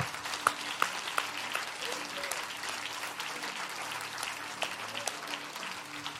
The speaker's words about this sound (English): Can you clap your hands one more time to the Lord?